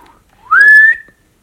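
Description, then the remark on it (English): A single short whistle from a person trying to whistle, sliding upward then holding a steady tone for about half a second before fading out. It sounds clear, with no talking. “I used to be able to whistle before I had my Invisalign.”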